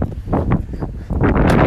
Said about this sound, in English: We are at Irving. Also known as Circle K. Circle K. Also, yes. All right. It's very windy.